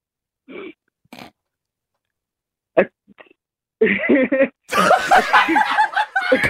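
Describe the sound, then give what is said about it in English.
A few soft breathy catches build up to one sharp, explosive sneeze, then a quick high-pitched giggle breaks out and grows into louder, breathy laughter. “I'm going to be honest, but yours is like a cute sneeze. Yeah. It is, because you giggle after you sneeze, which we is might, nice.”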